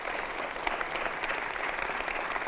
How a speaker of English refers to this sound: Give the Lord a big hand clap for that.